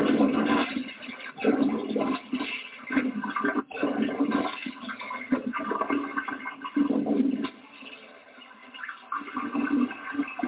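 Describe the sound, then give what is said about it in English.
Water is sprayed into a toilet bowl to wash off hot chocolate residue, a steady hissing splash that surges and dips in short bursts for about ten seconds, with no one talking. “Just spraying it with some water here so that way maybe I can actually get some of this stuff off.”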